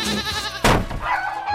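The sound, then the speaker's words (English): A goat bleats in a wavering, nasal cry, broken by a brief rough burst midway before the bleating trails on; no one speaks. “He tried to make up for it with an organic garden, some chickens, a goat that he tried to keep on the roof, but it was too slanted.”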